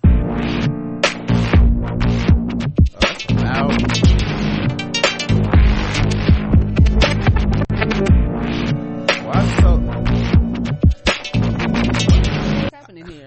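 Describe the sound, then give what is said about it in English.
Loud music blares continuously for about thirteen seconds, played by accident when trying to play a news article, with a dense layered sound, punchy rhythmic hits and what may be singing mixed in, briefly dipping once before ending abruptly. “I was trying to play a news article. This shit is loud as fuck.”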